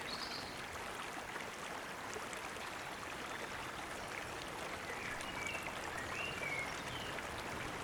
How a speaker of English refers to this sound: As I walk along the riverbank, the water takes turns in moving fast or slowing down to almost a trickle. Sometimes it bubbles, and other times it's just really calm.